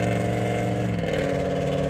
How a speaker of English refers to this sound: Don't worry, some truck just passed me and I guess he had to interfere with my voice unknowingly so that y'all couldn't hear what I said. But I prayed to God that it was clear enough to still get through.